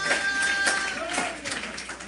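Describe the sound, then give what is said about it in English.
An audience claps together in praise of the Lord, a dense, steady wash of overlapping hand claps, with a faint sustained tone running underneath through the first half. “Oh, somebody give the Lord a hand clap of praise right now.”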